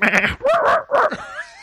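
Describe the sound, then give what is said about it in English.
A person's voice mimics a sheep, letting out a quick series of quavering, nasal bleats, fairly loud, each wobbling in pitch, with no other talking. “And then the sheep. You can do the sheep, right?”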